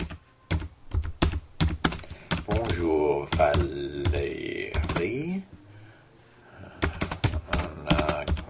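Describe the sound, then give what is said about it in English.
Rapid clicking of keys on a computer keyboard as someone types a message to a rental host, fairly loud, in quick irregular bursts, with a voice speaking briefly over the middle before the typing resumes. “So I sat down at my keyboard.”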